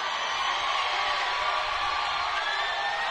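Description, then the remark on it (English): A parade crowd cheering for Travis Kelce in a steady, dense roar of many voices, with scattered whoops rising out of the wash of noise and no pause for the full three seconds. “And the crowd certainly enjoying Travis Kelce, too.”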